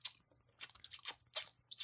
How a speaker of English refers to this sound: There's a Mike and Ike's in my popcorn. That's a shit quick note. I hate it. Also, did you have to get as gross as possible with that chewing?